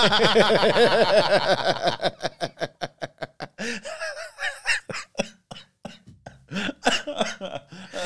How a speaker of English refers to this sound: Sorry, I didn't mean to make you cough.